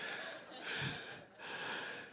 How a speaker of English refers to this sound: I know some of you are breathing hard right now. You're like, wow, man, I'm tired. Well, try doing it twice a week.